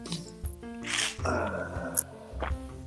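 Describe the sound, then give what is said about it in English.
Someone sips and swallows ice water, with wet gulping noises, a few sharp clinks of ice against the glass, and a low hum of voice under the drinking. “Crunching water again, huh? No, it's ice water.”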